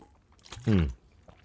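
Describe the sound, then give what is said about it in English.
A single sip and gulp of water, brief and fairly loud, with a short voiced throat sound as it goes down, surrounded by quiet. “I got my water.”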